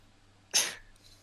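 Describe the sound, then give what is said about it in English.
A single sharp, high yap from a human voice imitating the bark of a small Pomeranian dog, fairly loud, quickly fading, with quiet background before and after. “… makes another dog bark noise, this time of like a small Pomeranian”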